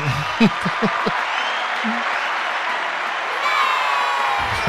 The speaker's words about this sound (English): I find the applause and the children screaming yay break up the monotony and the deep emotional trenches we go into.